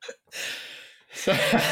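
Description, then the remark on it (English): A short throaty sound and a breathy rush of air, then a low, rough, gurgling burp that rumbles for about half a second. No one speaks. “So, I was just about to start and a burp bubbled up.”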